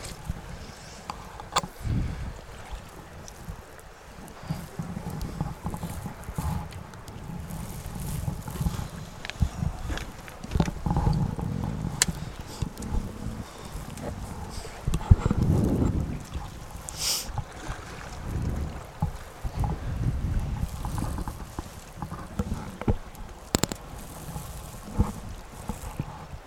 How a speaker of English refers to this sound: Back here to the left. Where the water's just merrily moving downstream here. Right about this line right here.